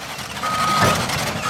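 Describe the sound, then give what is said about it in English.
A high, steady reversing beep sounds once for about half a second, then starts again at the end, over the loud, constant rumble and clatter of heavy construction machinery, as an excavator digs at a construction project on exposed shoreline on the south side of the Salton Sea, California, about an hour's drive from Bombay Beach. “About an hour's drive from Bombay Beach on the south side of the Salton Sea, an excavator claws at the earth. This construction project spans 6.5 square miles of exposed shoreline.”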